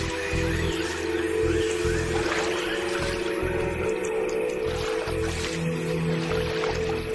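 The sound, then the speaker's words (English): Rapid, light splashing patters across water as a lizard's feet skitter over the surface while it flees a hunting bird, a quick run of wet slaps and squishes, heard over a steady tonal music bed with no voices. “This skitter across the surface of the water earns it precious seconds and the nickname Jesus Christ Lizard.”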